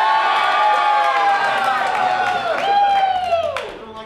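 A large audience cheers and applauds loudly for about four seconds, voting by applause for DNVR as the winner, with many overlapping shouts and whoops that rise and slide down in pitch before the noise starts to fade.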